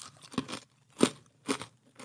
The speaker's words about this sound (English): These are good. Yeah. They're kind of like extra thick and crunchy. Chips. Well, no, they have a little bit of a barbecue flair.